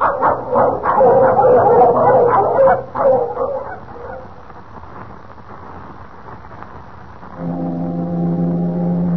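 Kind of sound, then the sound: animal, sled dogs barking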